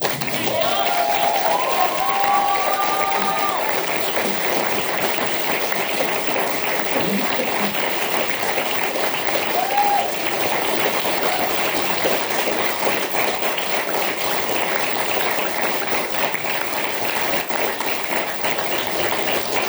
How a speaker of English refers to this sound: The endurance of this applause. Keep it up. Everyone deserves an audience as gracious as this one.